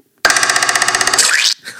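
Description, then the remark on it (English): A loud, springy pogo-stick boing: a rapid, rattling series of metallic pulses for about a second, ending in a quick upward-swooping twang and a brief faint tail. No one speaks. “That's a pogo stick.”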